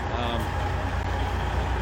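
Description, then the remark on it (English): A parked truck engine idles steadily in a downtown street, run just long enough to warm up; a continuous low, throbbing rumble with a regular pulse that holds at an even loudness throughout. “Guys are only, they're only idling their trucks just long enough to warm them up, and then they're shutting them off.”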